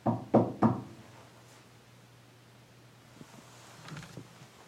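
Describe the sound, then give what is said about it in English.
Three loud, quick knocks on a solid surface in steady succession, made on request, followed by a low steady hum and a few faint clicks and rustles in otherwise quiet surroundings. “Alright, before we go, can you just knock three times like this?”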